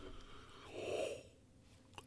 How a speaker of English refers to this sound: Anyway, oh, I'm going to yawn.